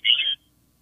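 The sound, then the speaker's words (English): A brief burst of thin, garbled telephone audio from a caller in High Point, North Carolina, the voice breaking up with feedback, lasts about a third of a second and then cuts off abruptly into near silence. “Stay there because it's really breaking up.”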